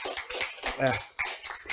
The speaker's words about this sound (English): Matter of fact, guys, can y'all give them a hand clap because they come every week.